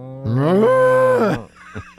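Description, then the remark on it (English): A person gives one long, drawn-out imitation of a cow's moo, rising in pitch and then holding steady, loud, before trailing off into a few faint sounds. “And the cows go right by us and start, as soon as they get by us where the people are, these cows start going, moo.”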